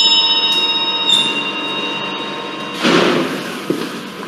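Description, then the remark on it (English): A servants' bell for the back door rings with a bright, sustained metallic tone that lingers throughout, followed by a soft knock and shuffling noise partway through. No one speaks. “And that's the back door. So James is going to go and answer it while I carry on.”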